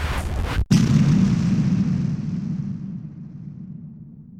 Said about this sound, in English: and that's when things turned for the worst. Sadly, an explosion happened inside of my nuclear reactor core that powers my computer.